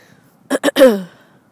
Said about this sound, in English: The coughing, the sighing, the vague descriptions of the week past.